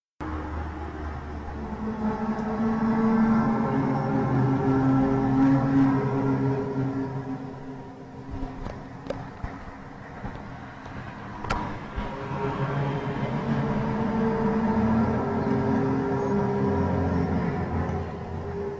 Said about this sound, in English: this hum is generally heard indoors and becomes louder at night. It is most commonly reported in suburban areas, and the noise becomes impossible for those people to track down. We're going to play a little audio for you of this hum sound right now.